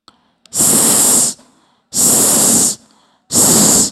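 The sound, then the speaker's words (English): A voice imitates a snake's hiss for the letter S with three drawn-out "sss" sounds, each under a second long and separated by short pauses, loud with no other speech. “I want you to imagine a snake that is skinny and green. Snake starts with the letter S.”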